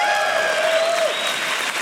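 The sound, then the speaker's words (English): Steady applause from a large audience at the WWDC developer conference, a dense wash of many hands clapping at a constant loud level, with a faint high whistle-like tone sliding down through the first second. “And they got pretty good applause in the developer conference.”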